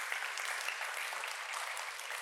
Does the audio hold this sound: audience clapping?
yes